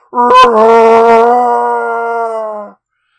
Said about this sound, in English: The voice spoke again, Run, run, human! This was followed by a deafening roar.